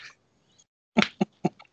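Three soft, slow golf claps, evenly spaced, followed by a faint trailing patter, with no talking.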